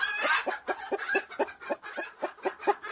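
Chickens clucking in a steady, rapid series of about a dozen short clucks, fairly loud, with no talking over them.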